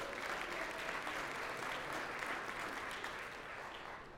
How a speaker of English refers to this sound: Thank you. Let's show them a round of applause. Yeah.